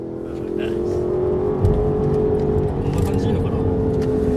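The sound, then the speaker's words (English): A car engine drones steadily during a sports car test drive at Lexus headquarters in Aichi Prefecture, Japan, heard by a passenger, its tone shifting slightly as it revs, with a brief louder surge partway through and faint talk mixed underneath. “That was one of the most fun I've had as a passenger in a car, maybe ever.”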